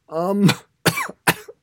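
A loud fit of three harsh coughs in quick succession, the first starting with a strained voiced rasp before bursting out, followed by two sharper hacks with no talking.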